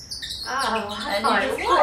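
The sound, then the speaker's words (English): A handheld bird call from the Audubon Society chirps and squeaks, a fast warbling run of bird-like notes that carries on for about two seconds at a fairly steady, moderate loudness. “I ordered bird calls from the Audubon Society. So this is about $50 worth of bird calls”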